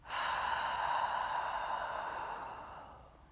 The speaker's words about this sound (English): And continue to breathe in that pace, in that rhythm.